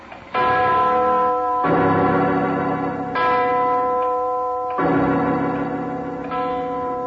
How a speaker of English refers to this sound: Can't you hear that ratchet? Get out of here, both of you. Yes, but what? It's the clock winding up. That giant bell's gonna...